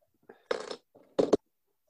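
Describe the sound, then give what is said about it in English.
A bottle of 8.4% alcohol beer is opened with an old Red Stripe bottle opener: a brief scraping, fizzy burst followed by a quick pair of sharp metallic clicks, fairly soft, with no one talking. “So the old red stripe bottle opener.”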